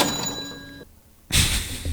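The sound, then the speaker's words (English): A cash register sound effect played from a sound pad rings with a bright, sustained chime that slowly fades, followed after a short pause by a loud metallic clatter as the drawer slides open. “What is this? A cash register.”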